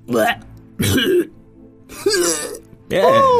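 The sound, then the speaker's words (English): A creature, the Phoenix Taco, hacks and retches in four strained, gurgling bursts separated by short pauses, coughing up a hairball. The throaty, voiced sounds are fairly loud, probably performed by a voice. “Can't you see the poor things coughing up a hairball?”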